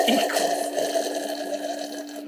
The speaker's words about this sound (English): Pretty good. Yeah, two big gulps in there.